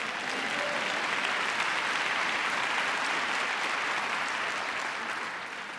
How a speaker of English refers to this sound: Go on, give a round of applause to the Lord.